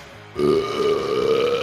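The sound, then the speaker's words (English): A long, loud, drawn-out burp from drinking organic kombucha tea rises abruptly after a brief quiet moment and rumbles steadily for over a second, with no talking. “Oh my God, I'm burping it up right now.”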